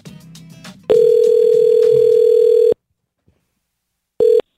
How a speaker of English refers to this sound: let's go ahead and make the phone call whenever Kevin give us a dial